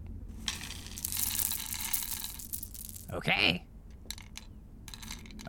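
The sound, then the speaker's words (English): A dense clatter of many small hard objects, teeth poured from a bag, spilling and rattling onto a floor for a couple of seconds, fairly loud, followed by a brief spoken word and scattered lighter clicks. “This bag seems to be full of teeth. Wow. Okay, let's just... Oh, I don't want to put my hand in there.”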